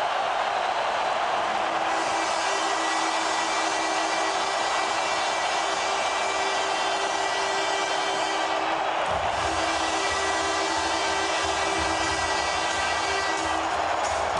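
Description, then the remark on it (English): A loud, sustained arena horn blares at the end of a hockey game in which Edmonton shuts out San Jose 2-0, with a steady, harmonically rich tone layered over the roar of a cheering crowd. The horn briefly dips and resumes partway through. “You can kind of hear that horn, partner.”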